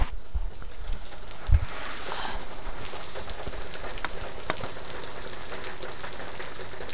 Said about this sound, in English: Yeah. There's a bit of rain for you.